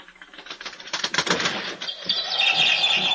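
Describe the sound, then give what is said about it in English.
Rapid fluttering of a bird's wings beating against a rattling window as it tries to get in, a quick clattering burst that rises in intensity, then gives way to a thin, high-pitched chirping squeal. No one speaks. “There's some bird out there trying to get in.”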